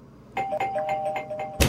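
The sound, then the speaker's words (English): A doorbell, pressed with an elbow by someone holding packages, rings, a steady electronic tone pulsing rapidly for just over a second, then cut off by a sharp, loud thump. “How did you ring the doorbell?”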